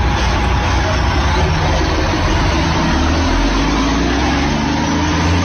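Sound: truck engine idling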